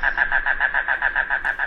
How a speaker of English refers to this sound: Today's Talking Birds featured feathered friend, one of the rain crows, Coccyzus minor, the mangrove cuckoo.